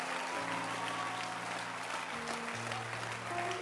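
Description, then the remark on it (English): A crowd claps loudly and steadily in a dense, continuous wash of applause. Sustained musical tones hum underneath, shifting pitch partway through. “Let your hand clap be big and strong and loud.”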